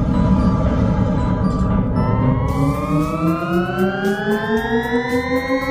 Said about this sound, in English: I mean, super annoying spaceship sound.